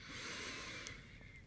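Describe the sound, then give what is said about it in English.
A long, steady breath drawn deeply in through the nose during a breathing exercise, an airy hiss lasting the whole moment with no talking. “Come on, really breathe.”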